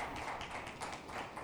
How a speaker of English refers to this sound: Come on. You can clap. I'll give you that.